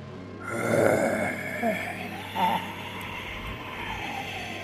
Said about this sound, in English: Her father's jaw lowered ever so slowly, and with his rotting throat, he uttered this terrible hoarse howl.